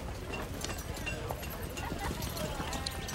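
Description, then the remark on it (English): Horse hooves clip-clop in a steady, repeated rhythm on a hard surface, with murmured voices and outdoor background noise throughout. “The only thing that seems to have changed is the horses seems to have changed. Oh, it's a new horse.”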